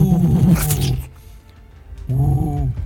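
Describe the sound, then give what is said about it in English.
Two loud roars from a giant stone golem named Herstag: a long growling bellow for about a second, a short pause, then a second, slightly shorter roar. No voices accompany them. “Then, as you hear the roar again and you turn around and you can see giant stone golem Herstag just like screaming into the void.”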